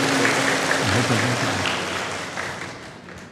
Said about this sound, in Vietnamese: Rồi cho tràng pháo tay.